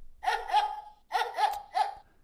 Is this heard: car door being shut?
no